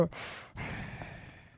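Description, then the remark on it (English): A voice imitates heavy mechanical breathing: one harsh, hissing inhale followed by a long rasping exhale, fairly loud, with no words spoken. “the breathing helps a lot.”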